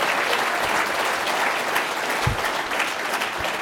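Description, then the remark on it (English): A crowd gives a round of applause for a group of gentlemen, a dense wash of many hands clapping at an even, fairly loud level for a few seconds, with no voices standing out. “Boy, y'all got to give them a round of applause.”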